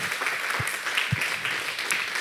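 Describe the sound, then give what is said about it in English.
Steady applause from a church audience, celebrating news that 17 kids trusted Christ and 11 rededicated their lives; a dense wash of many hands clapping at moderate volume with no voices over it, sustained evenly for a couple of seconds. “And listen, y'all clap. That's awesome.”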